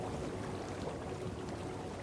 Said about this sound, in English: There's a very ornate and lavish looking, finely crafted armoire, and just off to it you can hear the sound of bubbling water.